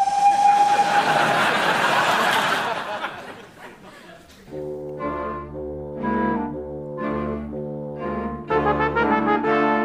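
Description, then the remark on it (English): A loud burst of hissing steam fills the first few seconds, then a steam train whistle sounds in several strong, harmonic blasts, the last one longer and brighter. No one speaks. “Mind if I put a bit of water on the coals? Best not. Train might stop.”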